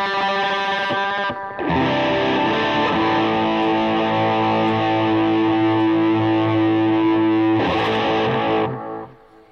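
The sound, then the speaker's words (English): Distorted electric guitar rings out through echo and delay effects, holding thick sustained chords that swell loudly after a short break, then trail off near the end. No one speaks. “I love playing with echoes, delays.”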